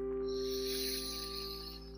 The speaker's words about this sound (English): We'll start here by just focusing on the breath, breathing in through the nose.